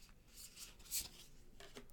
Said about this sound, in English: I'm just shuffling the cards.